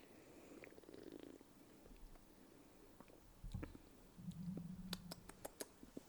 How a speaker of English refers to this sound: All right, I'm going to take an inaugural sip.